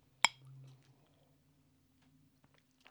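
A single bright, sharp clink of beer glasses knocking together in a toast, with a short ringing tail, followed by quiet background hum and faint small sounds.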